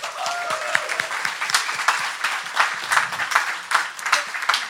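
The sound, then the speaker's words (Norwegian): Steady applause from an audience for the day's guest, an adder photographer and leader of the Norwegian Herpetological Society, many hands clapping in a dense, continuous patter at moderate loudness, with a few faint voices and whoops mixed in. “En stor applaus til dagens gjest, hoggormfotograf og leder for Norsk Herpetologisk Forening”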